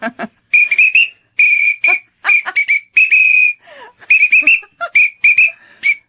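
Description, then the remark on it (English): A shrill emergency whistle blown loud, playing a bouncy tune as a run of short and held blasts in a march-like rhythm, with no talking. “And I think you start to lose heart, but you can always just keep blowing into a whistle.”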